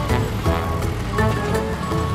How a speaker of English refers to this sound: Oh, here's the dump truck again. This time it's taking material that isn't needed out of the construction area.